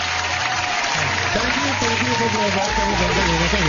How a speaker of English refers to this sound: Let me give you some. Let's get some applause. Some applause going on here.